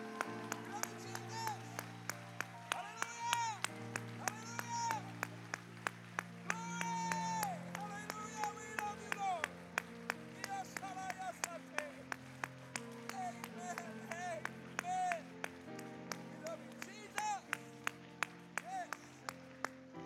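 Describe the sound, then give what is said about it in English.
A crowd claps hands together in a steady, rhythmic beat, sharp and continuing throughout, giving the Lord a hand clap in worship alongside raised voices and a sustained musical backing. “Let's give the Lord another hand clap.”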